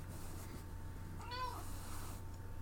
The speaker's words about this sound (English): Hello, my cat.